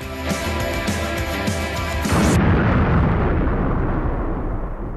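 Music plays with a steady rhythmic beat, then abruptly cuts off as a loud, rumbling explosion takes over and roars on for several seconds, with no speech.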